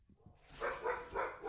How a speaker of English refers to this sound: Ignore my dog's barking.